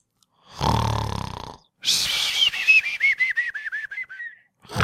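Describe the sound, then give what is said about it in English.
A loud snore: a raspy rumbling inhale, then a long whistling exhale that pulses and wobbles downward in pitch, with the next rumbling snore just starting at the end. “How does the snoring sound? Any better? Any worse?”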